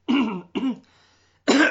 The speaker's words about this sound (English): I got to clear my throat.